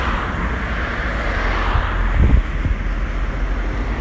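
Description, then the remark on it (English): A steady, dense roar of road traffic from lots of cars on a street, with one vehicle swelling briefly past amid the continuous rumble of cars. “The perspective I've got of walking down here every day is what I'm seeing right now. Lots and lots of cars, people going to work, kids going to school.”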